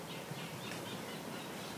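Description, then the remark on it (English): Chattering songs of several reed warblers at once in reed beds surrounded by farmland, rising over a steady hiss of wind through the reeds, with no one speaking. “I can hear multiple reed warblers.”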